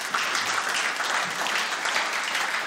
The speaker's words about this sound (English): You can clap for that.